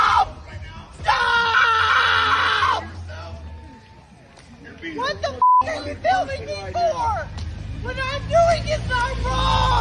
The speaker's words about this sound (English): doesn't that remind you of the screaming